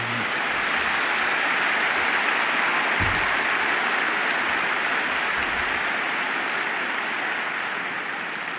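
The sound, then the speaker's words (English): A large audience applauds steadily for a group just introduced, a dense, sustained wash of clapping that stays loud and even throughout without any voices standing out. “Now you can go wild with applause for the group.”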